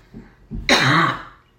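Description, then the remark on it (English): A single harsh COVID cough, fairly loud, preceded by a faint low throat rumble, then trailing off into quiet. No talking. “COVID cough.”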